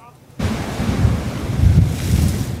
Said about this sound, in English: Back on parts of the South Coast, some people who headed out early this morning faced some very strong winds today.